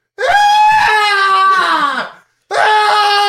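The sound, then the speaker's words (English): A person lets out two loud, shrill, strained screams imitating an elk's call, the first long and falling in pitch, the second starting after a brief pause and cut off. “I'm gonna rear up on two legs and do like an elk scream.”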